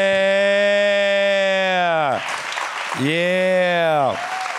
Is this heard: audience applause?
yes